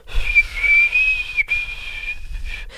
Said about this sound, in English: That's the maximum control I have in my whistle.